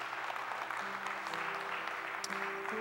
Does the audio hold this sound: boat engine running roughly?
no